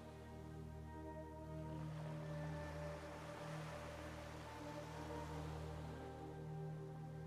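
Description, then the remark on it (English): Small, gentle waves lap softly and continuously against a white sand shore, a steady wash of water with faint swells, accompanied by a low sustained humming drone and no voices. “Small waves are lapping against the shore.”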